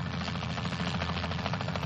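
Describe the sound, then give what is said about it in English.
A helicopter flying into a remote area of virgin rainforest with no roads: its rotor beats in a fast, steady rhythm over a dense, loud engine roar that holds constant throughout, with no voices. “Let me show you what it looks like going into the area in a helicopter.”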